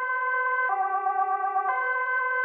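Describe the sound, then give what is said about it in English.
An emergency vehicle siren blares in a steady two-tone pattern, switching between a high and a lower pitch about once a second, loud with no voices. “I believe this is literally the second time today we've heard sirens as a cue to leave.”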